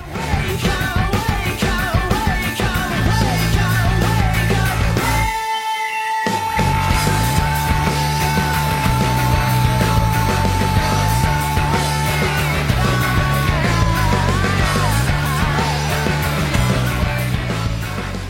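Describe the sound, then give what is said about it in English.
A loud, dense rock song with a male vocalist holding one long, unbroken scream for several seconds after a brief break, the full band pounding underneath before the singing carries on. “Yeah, it's interesting that he's able to do that long scream, which is great, and then sing at the same time.”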